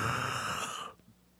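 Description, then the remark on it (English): Someone makes a breathy, airy ghost noise with their voice, a single hollow exhale with a faint wavering tone that lasts under a second before cutting off into near silence. “No, I was trying to do a ghost noise, but it didn't come off that great.”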